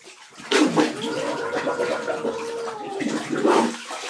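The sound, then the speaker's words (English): Muffled, bubbling underwater gurgles as a head is dunked beneath bath water, with sloshing bursts at the start and end and a low, steady burble between, moderately loud with no talking. “I'm going to dunk my head under the water here just so I can, just get myself clean.”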